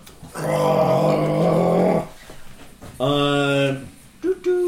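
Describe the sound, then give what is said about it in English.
A voice imitates a train-whistle roar: a loud, sustained, strained cry lasting nearly two seconds, then a shorter, higher wailing blast, followed by a couple of brief grunts. “Let out a half train whistle roar.”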